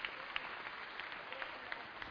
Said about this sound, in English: How about you give them a round of applause for their attention? Yeah, that's a good group right there.